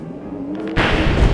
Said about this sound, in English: So, Bim will reach her hand up towards the sky again as the bell starts going off. Yeah. And will repeatedly use thaumaturgy just over and over again to make that crashing of lightning sound.